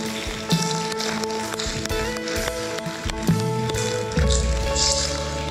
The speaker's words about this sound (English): Would you give God a hand clap of praise this morning?